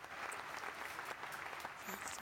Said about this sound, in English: They're still applauding me. Give me space to be. Let me get the adulation, please. Thank you.